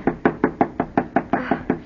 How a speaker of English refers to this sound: Knock harder. I can't. It hurts my knuckle. Oh, let me.